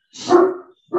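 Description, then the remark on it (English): A large dog, almost 140 pounds and two years old, gives a loud, deep bark, with a second bark starting right after a brief pause. No one speaks. “He's going to bark his face off.”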